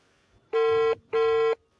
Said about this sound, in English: All right, the phone is actually ringing right now, so let's wait for her.